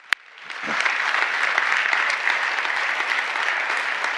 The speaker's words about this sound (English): In fact, let's appreciatively applaud the Lord for this place.